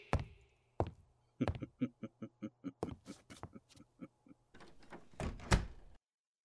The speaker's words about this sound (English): Very well. I'll close the door.